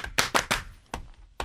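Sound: slow clap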